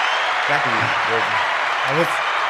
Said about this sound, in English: Do the clapping thing. Yeah, bro, I don't think it's clapping. I don't get any clapping, man. Sorry, bro. Yeah, that was clapping.